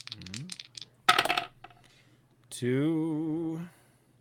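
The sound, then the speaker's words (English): A quick, sharp clatter of dice tumbling and settling lasts about half a second, fairly loud, between a brief bit of speech before it and a drawn-out vocal exclamation after. “We're bringing out the dice.”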